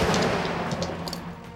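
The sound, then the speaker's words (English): A loud explosion of an RPG hitting an MRAP vehicle, which is launched backward and flips onto its roof: a dense roaring blast with sharp crackling bursts that slowly eases off as it rumbles on, with no voices. “Rory, inside the MRAP, you see Bryant duck his head down, and there is a loud explosion.”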